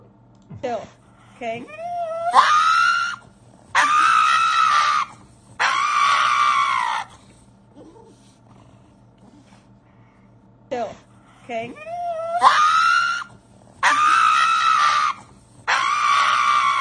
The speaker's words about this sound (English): Oh my goodness, was that funny? That dog screamed like a person.